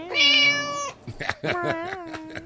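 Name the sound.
kitten meowing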